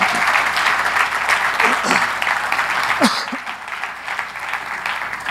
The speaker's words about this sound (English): Can we give these guys a hand clap as they kick their shoes?